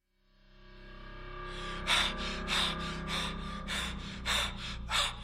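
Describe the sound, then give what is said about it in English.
A man gasps for air in rapid, ragged breaths, about seven sharp heaving gulps in a row, loud over a low, steady droning tone, as he sits bolt upright in the dark after waking from a dream of suffocating. “Amos sat bolt upright, gasping in the dark, trying to find his air.”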